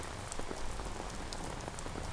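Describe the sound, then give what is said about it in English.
Steady rain pattering on a hard surface, a dense continuous hiss with scattered sharper drop impacts, even in loudness throughout, with no voices. “It's like this damn rain.”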